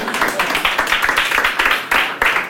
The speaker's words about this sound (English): Don't be clapping that hard.